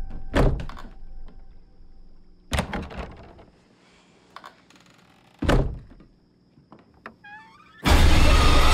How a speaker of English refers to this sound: Can you close the closet door?